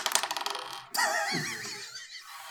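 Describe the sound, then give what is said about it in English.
Dice are re-rolled, clattering and tumbling across a hard tabletop in a quick burst of rattling clicks, then a wavering high-pitched tone takes over as the rolling stops. “Paper I will allow you to re-roll it.”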